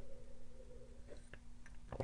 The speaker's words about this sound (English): A little sip of tea. God, I love green tea.